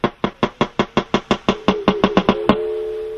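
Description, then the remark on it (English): A wild walrus recorded underwater in the Canadian High Arctic makes a rapid series of sharp, loud knocks, about a dozen in steady rhythm, slightly accelerating, followed by a final louder knock and a sustained ringing, bell-like tone, as part of its breeding sounds. “This might sound like a German industrial band from the 1980s, but this is a wild walrus, recorded in the Canadian High Arctic, underwater.”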